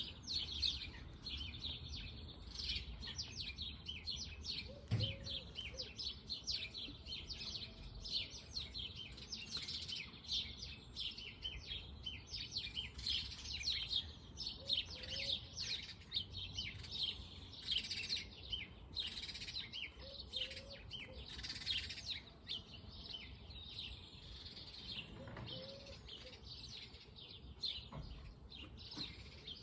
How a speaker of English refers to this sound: Wow, some nice bird sounds here. And this has always been a nice place to walk. I've always enjoyed being here. It's relaxing. There's no traffic here. It's the grassy area behind the apartment building.